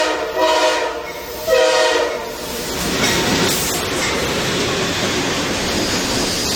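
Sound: passing train with horn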